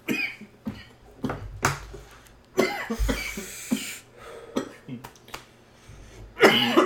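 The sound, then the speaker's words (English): Repeated harsh coughing fits after taking a hit, several loud bursts in a row, with raspy throat-clearing and breathy gasps between them. “Cough meter. Cough meter check.”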